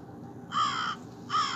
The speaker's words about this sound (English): So this is what I heard, y'all, out the window. No, that's the raven. This the crow.